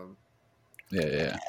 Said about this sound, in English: Oh, that just sounds like me actually pouring.